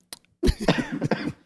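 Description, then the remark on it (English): A person coughs into their elbow: a brief catch, then a rough, throaty run of several coughs over about a second, with no talking. “he says as he coughs into his elbow.”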